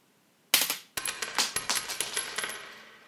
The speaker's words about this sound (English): But let's actually listen to the sound of a coin, because I have, let's listen to that.